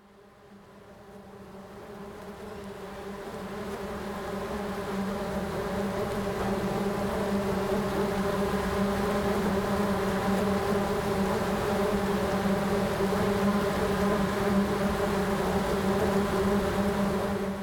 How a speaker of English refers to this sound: A hive of the sugar bag bee, endemic to northeastern Australia.